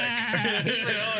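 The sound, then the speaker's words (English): A person mimics the bleat of a goat in a goat area, a single wavering, nasal cry held for just over a second, fairly loud. “And so we went through there and then we went through a goat area and there was a goat that kept going.”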